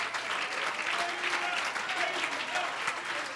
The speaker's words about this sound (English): Give the Lord a hand clap of praise.